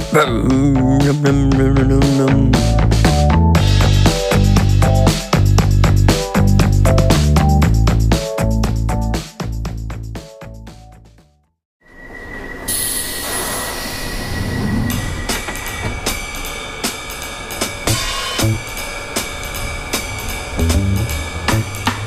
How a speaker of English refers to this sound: Oh, no. Oh, I hate it when this happens. Oh, Pigeon has gotten on the tube train. Crap, I should do something.